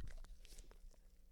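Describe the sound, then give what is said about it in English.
A pet named Webby licking the creases of her legs: a quick run of wet, smacking licks and slurps with small crunchy clicks, fairly soft, with no talking. “How Webby licks her creases in her legs. Like, and it's so loud.”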